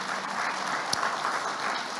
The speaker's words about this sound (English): Okay, you can clap to the Lord. It's him doing it.